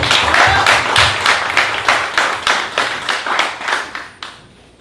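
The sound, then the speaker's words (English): An audience claps for a guest arriving on stage, in a steady, rhythmic beat: about a dozen loud, sharp claps in quick succession that gradually taper off and stop. “Let's give a round of applause for old guy in the building.”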